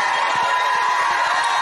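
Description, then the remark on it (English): A crowd shouting and cheering in a loud, continuous roar, with quick low thumps pulsing underneath throughout. “Come on, don't stop shouting.”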